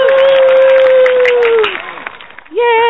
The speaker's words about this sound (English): Bunch of applause here. Woo!